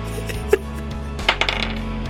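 Fate dice rolled during a tabletop role-playing game clatter onto a tabletop: one sharp click, then a quick cluster of bouncing taps and rattles a moment later, fairly quiet, with no voices.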